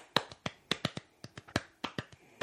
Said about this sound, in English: That's a horse footsteps.